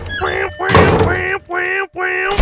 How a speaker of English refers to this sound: where he hits a big unknown button until right now, which closes all of the windows and doors.